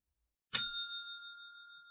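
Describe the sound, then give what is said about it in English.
A single bright bell strike, rung as a spoiler warning before discussing the tag scene of the film Venom, rings out on its own, its metallic tone lingering and slowly fading over more than a second of silence. “So the tag goes here, throw a spoiler bell out real quick.”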